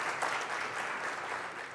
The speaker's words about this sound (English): Give God a hand clap.